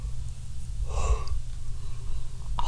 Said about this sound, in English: God, I try not to yawn.